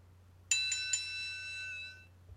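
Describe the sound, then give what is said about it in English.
A bright doorbell chime strikes three quick times in succession, then rings out and slowly fades over about a second and a half, with no talking, only a faint low hum underneath. “And the bell has rung.”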